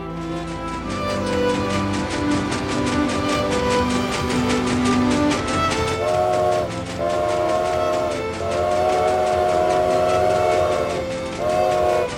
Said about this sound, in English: The sound of the train transporting souls to the chambers.